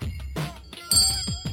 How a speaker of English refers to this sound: Oh my God, do we have handbells? Can we do a little handbell chorus? Yeah, we got tiny little.